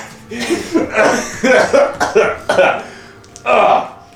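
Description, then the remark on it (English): A person coughs and clears their throat repeatedly, a string of rough, broken bursts with a louder, harsher hack near the end. “Sorry, there was something in my throat.”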